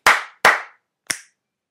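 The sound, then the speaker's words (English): Two loud, sharp hand slaps in quick succession, then a brief pause and a single lighter, crisper snap, with no voices. “Three slaps. Three quick slaps. One snap.”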